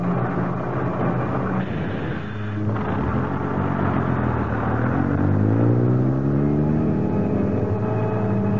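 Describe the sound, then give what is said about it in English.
A heavy bus engine rumbles steadily on the road during a long bus ride, loud, its pitch climbing as it accelerates and shifts through gears, with constant road noise underneath and no voices. “It was a long bus ride, but it seemed short to me.”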